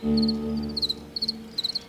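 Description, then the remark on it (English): A male cricket's post-mating chirp: clusters of quick, high-pitched pulses repeating roughly every half second, clear over a low, steady hum with no voices. “Occasionally, the sweet chirp of what I'm pretty sure is the post-mating chirp, which the male makes to keep the female close.”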